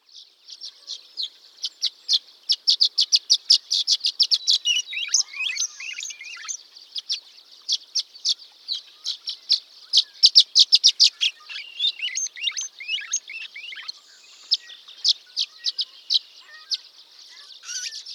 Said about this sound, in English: The violet green swallows are pretty and sweet, pretty to cheap.